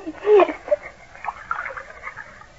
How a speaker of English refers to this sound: Here comes the water. Oh, pour some in the glass.